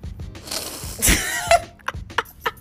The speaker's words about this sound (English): Now, with that being said, let me blow my nose real quick.